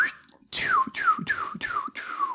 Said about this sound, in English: Guys, I have to do a lower pitch whistle because it's not working right now. Wow, so manly.